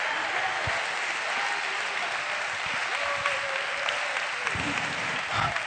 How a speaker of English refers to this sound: Somebody give the Lord a round of applause. Come on, come on. Give it to him. He is worthy of all honor of our praise.